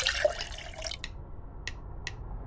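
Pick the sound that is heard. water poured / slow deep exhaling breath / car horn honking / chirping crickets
water poured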